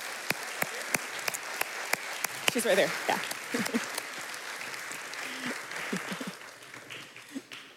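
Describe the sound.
A round of applause from an audience, a steady wash of many hands clapping that carries on throughout, with a few sharp louder claps standing out and people briefly talking underneath.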